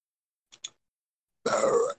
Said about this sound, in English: That burp sounded like a Pokemon cry.